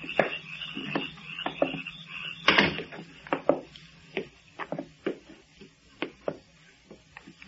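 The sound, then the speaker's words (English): A basement entrance door creaks and thuds shut, followed by a run of sharp, uneven knocks and clicks spaced irregularly over several seconds, with no one talking. “Follow me, but watch your step and close the door behind you.”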